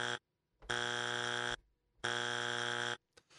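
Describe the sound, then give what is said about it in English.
A loud, harsh electronic buzzer blares in three sustained blasts separated by short silences, each steady, with no one talking. “Three buzzers.”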